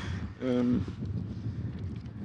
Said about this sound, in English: Well, it's quite windy here, so, but it's very nice.